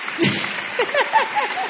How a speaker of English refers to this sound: Is that a song playing? Applause. Oh, okay. Round of applause.